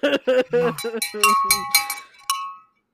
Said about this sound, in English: I'm trying to be a little bit quieter with that bell ring.